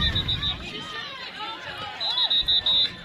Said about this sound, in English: And whistles blow to stop the clock.